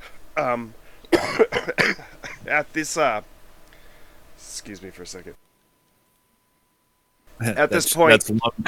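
Loud bursts of harsh coughing and throat-clearing, put down to the steam from boiling down maple syrup, come in a ragged run, fall silent for about two seconds, then resume in another strained fit.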